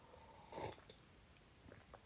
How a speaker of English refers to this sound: While I loudly sip my tea, I can't believe I haven't been recording sipping on my tea. I drink tea, herbal tea, all the time.